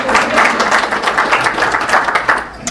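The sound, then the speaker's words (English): A room full of people claps steadily, a dense wash of overlapping hand claps that holds at a fairly loud, even level throughout, with no speech over it. “Round of applause.”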